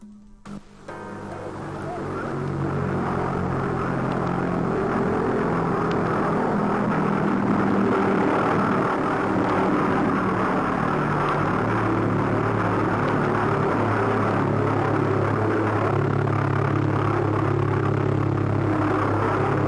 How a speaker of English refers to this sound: You want to hear that the V1 rocket, not V2. You want to hear that the buzzing?